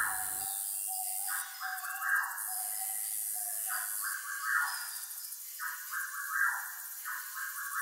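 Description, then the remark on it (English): A dense jungle soundscape from the Welcome Home Habitat installation, part of the Botanical Resonance exhibition, playing in a room across from a museum entrance: a constant high buzz of chirping bugs under screeching bird calls and repeated rising-and-falling wailing cries like monkeys, at moderate volume with no talking. “The sound of screeching birds, chirping bugs, and wailing monkeys emanate from a room across the museum entrance.”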